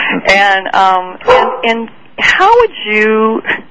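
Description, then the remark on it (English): A small pet dog, Goldie, barks and yips several times in quick succession, the high, tonal barks loud, some drawn out into whiny, rising cries. “oh, it sounds like your little doggy is there.”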